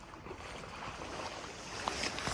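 Ducks splash, dive and churn the water, a steady wash of sloshing broken by a sharper splash toward the end, with no voices.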